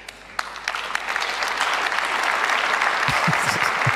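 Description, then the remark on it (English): An audience of women claps in a dense, steady patter that swells after a sparse start, forced and dutiful rather than enthusiastic, after a man tells the women they have the power to change, with a few low voice-like murmurs surfacing near the end. “The other women just forcefully clapping.”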